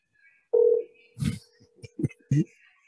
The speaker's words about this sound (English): Mobile, Alabama. We're calling Mobile, Alabama McDonald's.